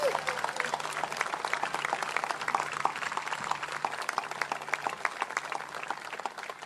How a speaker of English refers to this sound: Can we have a round of applause for the steering committee?